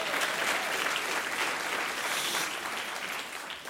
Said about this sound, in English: All right, City Church, how are you? Can we get a round of applause for the band? How awesome are those guys?